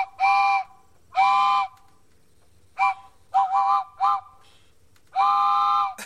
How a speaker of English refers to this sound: You hear that train fall off the tracks?